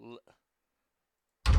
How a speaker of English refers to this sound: There you go. Door to Manland opens quickly, and it closes quickly too, people.